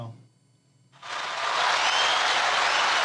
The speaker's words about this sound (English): That's where the applause goes.